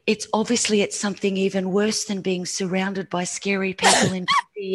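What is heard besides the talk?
sneeze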